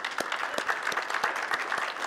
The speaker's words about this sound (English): Can we pause and give them a round of applause for the work they've done?